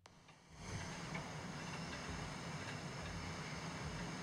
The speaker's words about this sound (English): Right now, just some boat noise.